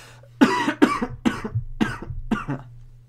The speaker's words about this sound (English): Sorry, I'm coughing.